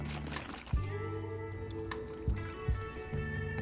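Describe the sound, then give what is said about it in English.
Milk pours steadily into iced coffee in a mason jar holding four ice cubes, a continuous liquid gurgle broken by a few sharp clinks of ice. No one speaks. “And then add milk.”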